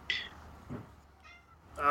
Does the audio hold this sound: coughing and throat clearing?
no